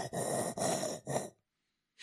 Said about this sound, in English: Sorry. Sorry for breathing heavy.